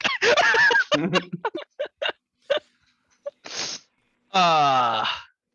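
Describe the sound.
A string of sneezes: short, choppy vocal bursts give way to a sharp, hissing sneeze, then a loud, drawn-out voiced cry at the end.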